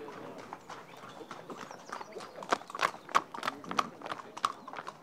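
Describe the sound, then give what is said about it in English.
A horse's hooves clip-clop on hard ground in a steady walking rhythm at a horse fair, the sharp knocks growing louder over a busy outdoor background murmur. “The horse fair.”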